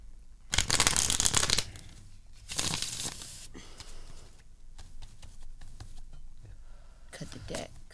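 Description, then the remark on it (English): A deck of tarot cards is shuffled for a tarot reading in several crisp, papery bursts: two long riffling passes, then softer handling, and a final quick shuffle near the end. “Cut the deck. Whatever you're feeling, you just shuffle it and think of that intention.”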